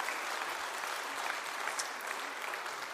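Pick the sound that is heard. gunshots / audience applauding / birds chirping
audience applauding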